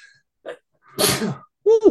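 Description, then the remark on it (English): A single loud sneeze caused by fall allergies bursts out with a sharp inhale before it, followed by a brief voiced sound right after. “Fall allergies have been kicking my butt. My apologies.”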